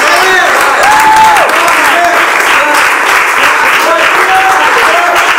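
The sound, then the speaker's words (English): A church audience claps their hands steadily during worship in dense, continuous applause that stays loud throughout, with scattered voices and a few high shouts rising over the clapping. “Every time I clap my hands, I'm getting renewed.”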